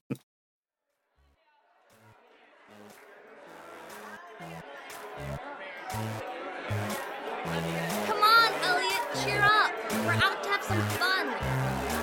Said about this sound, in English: I'll be honest, the crowd's a bit intense. Come on! There's a great mix of all races and backgrounds here.